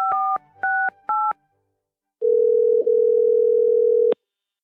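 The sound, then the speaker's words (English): Three quick touch-tone beeps from a phone keypad as a call is placed from a car, then a steady, continuous telephone tone hums for about two seconds before cutting off with a click. No one speaks. “Down in his car, Matt sat with his phone.”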